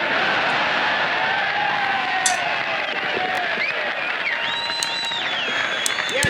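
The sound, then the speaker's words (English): A crowd applauds Bob steadily for several seconds at Denang (Da Nang), a dense wash of clapping with scattered high whistles and cheers rising above it. “Oh, they love him. They clap for Bob.”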